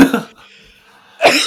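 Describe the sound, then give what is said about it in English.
Two short, stifled coughs about a second apart, with a quiet pause between them, as a person holds in their coughs. “I'm kind of laughing right now because I can hear you holding in your coughs.”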